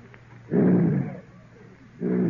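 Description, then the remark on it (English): A voice imitates a lion's roar: a loud, low, rumbling growl, a short pause, then a second roar starting that cuts off abruptly, with no other talk. “A lion. Quiet, folks. One lion!”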